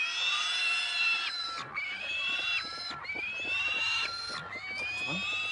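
A pig squeals loudly and almost without pause, shrill drawn-out cries coming in four long bursts that rise and fall in pitch, with no voices present.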